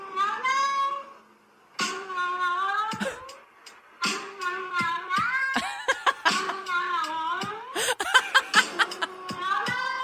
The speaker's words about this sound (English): So this YouTuber has his cat saying what kind of sounds like, I'm not, hello, and did like a little remix of it, looped it, and turned it into a song. Made it a song. Here it is.